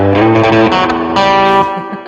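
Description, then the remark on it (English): A loud, bright electric instrument plays sustained, ringing notes soaked in a splashy spring reverb, with a slightly distorted edge and lingering tails between changes, no voices present. “It sounds so different with the spring reverb.”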